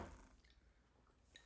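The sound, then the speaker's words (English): Glasses clink together in a toast: a soft knock at the start, then a brief, bright ringing clink near the end, both quiet with no talking. “Cheers to this.”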